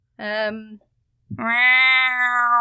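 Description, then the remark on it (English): Two drawn-out, loud meows, a short one followed by a longer sustained one after a brief pause, voiced by a person imitating a cat, presented as a cat named Kipper saying hi. “I don't see any cats. Do you see any cats,”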